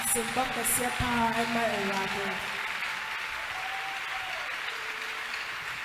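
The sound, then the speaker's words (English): A Revival Ministries International audience, seated, claps its hands in a steady, dense wash of applause that carries on for several seconds, with raised voices sounding over it during the first half. “I decree, as you're clapping your hands, your victory will come from somewhere.”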